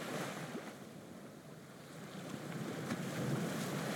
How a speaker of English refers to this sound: You are riding the ferry from the mainland. It's only about a 25-minute ride.